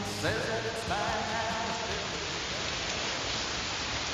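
Heavy rain pours down in a steady, dense hiss that fills the whole recording, with a brief voice faintly audible near the start beneath the downpour.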